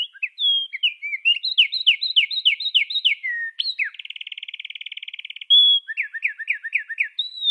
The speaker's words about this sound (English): The wren is a really good example for me. To the human ear, it's quite high pitched, it's incredibly fast, and it's rather shrill. Slow it down, and it has got such musicality to it. It is astonishing.